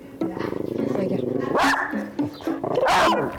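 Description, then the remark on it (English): Dogs bark in a few sharp, loud bursts, with yappy yelps rising over someone talking throughout. The dogs are Blackie and Princess, pets of a family in Pretoria, South Africa. “She lives in Pretoria, South Africa, with her family and her dogs, Blackie and Princess, who you can probably hear.”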